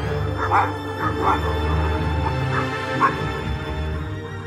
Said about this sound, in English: I do not sleep well. My dreams are haunted by beating wings, and outside, far off, a dog barks, on and on through the whole restless night.